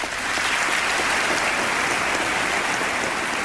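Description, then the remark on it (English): A bipartisan standing ovation at a State of the Union address, applauding a call to enforce immigration laws: a large crowd claps in a steady, dense roar that holds at full strength throughout, like heavy rain, with no speech heard. “And that was from a State of the Union address, and that was a bipartisan standing ovation and applause for the radical racist concept of enforcing our immigration laws.”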